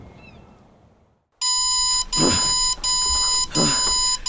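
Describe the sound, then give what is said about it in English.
After a second of quiet, an alarm clock set for five a.m. starts blaring a loud, steady electronic tone with harsh buzzing harmonics, cutting out briefly in a repeating pulse pattern. “Five a.m.? Who set this goddamn...”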